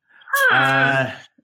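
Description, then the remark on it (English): A cat crying to be let in: one long, drawn-out wailing meow that starts softly, swells loud and holds steady for about a second, then fades, with no talking. “I'm just going to disappear because my cat's crying to come in.”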